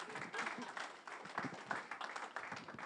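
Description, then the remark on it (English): A church audience breaks into steady applause, many hands clapping together in a dense, continuous patter that holds at an even, moderate level for a few seconds. “Tempted to do a round of applause.”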